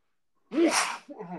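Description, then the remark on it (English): A single loud sneeze bursts out after a moment of silence, trailed by a short voiced exhale. “Bless you.”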